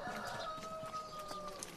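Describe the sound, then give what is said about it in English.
A hen clucks steadily in a drawn-out, sing-song run of calls, announcing she is about to lay an egg, outside near a workshop; clear, with a faint constant hum and light background noise behind her. “That's Humpy. She's announcing that she's going laying.”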